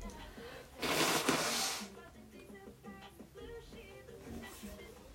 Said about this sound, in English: Hold on, guys, I need to blow my nose.